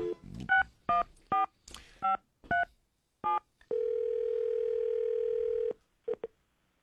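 A quick series of about seven electronic touch-tone beeps as a number is dialed, then a steady two-second tone and a couple of short final blips, clear with no voices.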